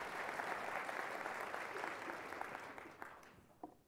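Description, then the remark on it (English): An audience applauds during a speech about the Universal Pre-K and Say Yes programs for children in Cleveland, a dense wash of clapping that holds at a fairly even level before thinning out and fading near the end, with a few scattered final claps. “These two programs, you can applaud for that if you want.”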